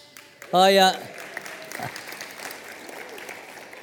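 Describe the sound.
An audience claps in a steady, crackling patter that carries on throughout, opened by a brief, loud, high-pitched cry cutting over the top, with some voices mixed in.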